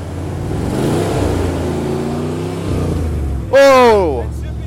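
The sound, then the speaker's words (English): A Dodge Durango engine runs with a steady, low rumble that rises slightly in pitch, then a loud, high falling whine or cry cuts in briefly near the end. “It looks like the Durango might live to see another day. There's smoke coming out the bottom. Or is that exhaust?”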